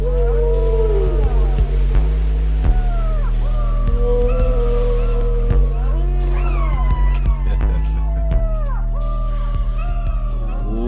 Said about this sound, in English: I don't think that's a little fella. Oh, big fella. Big whale.